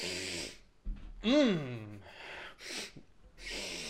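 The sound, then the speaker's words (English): Several breathy sniffs and snorts come in short bursts, with a voiced gasp-like sound in the middle, as someone sniffs a Carioca School Glue Stick. “You want a sniff, a little glue sniff?”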